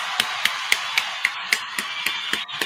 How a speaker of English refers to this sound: Also, let's go ahead and get the round of applause.